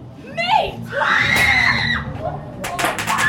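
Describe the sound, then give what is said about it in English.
Several people scream in high, wavering shrieks that rise and fall, overlapping one another, with a burst of sharp clattering noise near the end, recorded inside a haunted maze at a fall spooky-season event in the country's capital. “We got some inside recordings, and the screams are as frightening as encouraging everyone who is a horror fan to try it.”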